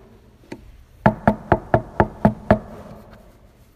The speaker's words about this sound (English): That isn't to wake you up. That's Jesus knocking on the door of your heart.